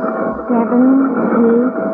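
A rail car moving up to take on a load rumbles along steadily with a fairly loud mechanical drone and a thin whining tone that rises and falls as it moves.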